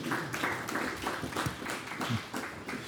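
A church audience claps together to thank a man for his work on the church's transformation. A steady, dense wash of overlapping hand claps holds at an even, fairly loud level for the whole three seconds, with no voices standing out.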